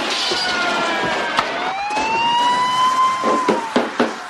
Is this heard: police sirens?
yes